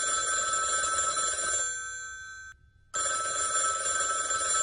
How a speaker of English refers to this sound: Guess I need to ring the bat phone.